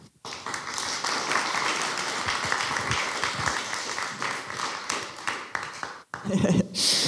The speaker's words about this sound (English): So perhaps we can just give her a round of applause as she comes up.